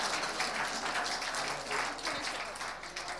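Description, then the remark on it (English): A crowd applauds the participants of a taste test steadily, dense overlapping claps forming a continuous wash of noise at moderate volume, holding level for a few seconds before tapering slightly at the end. “Let's give everyone a clap. Well done, guys.”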